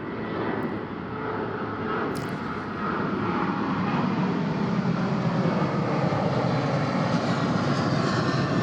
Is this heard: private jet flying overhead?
yes